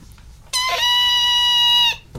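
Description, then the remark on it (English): A person imitates a puff's high-pitched scream of pain as it is hurt while transforming into a green dragon: one loud, shrill, sustained wail held at a steady pitch for about a second and a half, then cut off. “You've never heard a puff scream in pain before? Mm-hmm. It's a really just high-pitched...”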